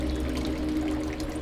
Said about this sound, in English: Others illegally opened fire hydrants to provide a little relief and a little joy. Less joyfully, pelted workmen with rocks and bricks when they tried to shut them off.